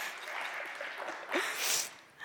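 A crowd claps steadily for a couple of seconds to thank a person who enlarged the screen display, a dense crackle of many hands that swells briefly toward the end before easing off. No one speaks.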